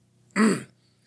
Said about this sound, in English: he carefully folds his hands behind his back before clearing his throat.